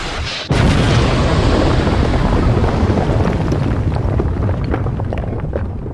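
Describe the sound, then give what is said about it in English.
A loud explosion bursts in suddenly after a brief moment of quiet, then rolls on as a heavy, roaring rumble that slowly fades over several seconds, with no voices. “And if someone asked me that I had to describe Michael Bay movies with one word, that one word that I would choose would be explosions.”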